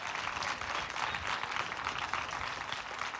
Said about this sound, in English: Please, a round of applause, please.